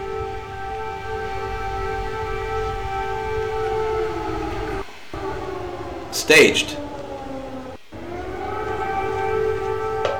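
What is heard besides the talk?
air raid siren wailing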